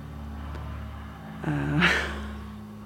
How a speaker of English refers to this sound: Sorry, there's a plane going overhead at the moment.